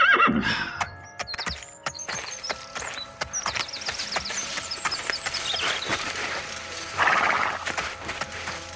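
A horse whinnies as it is being tied up, then its hooves clop and shuffle in an uneven rhythm, with a few snorts and creaking tack, followed by another loud neigh near the end.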